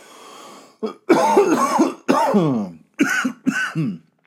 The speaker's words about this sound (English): Man, cough it up, dude.